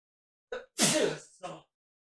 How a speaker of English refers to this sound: All right, I had a sneeze there, ladies and gentlemen. Bless you.